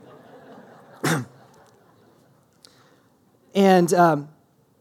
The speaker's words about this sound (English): Did I cough at a weird time? I'm sorry.